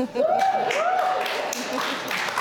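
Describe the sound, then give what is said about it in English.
A crowd applauds in a dense, steady wash of clapping, with a rising and falling whoop or cheering voice riding over it early on. “Well, in contradiction to the applause, the point I'm trying to make is Shakespeare was very good.”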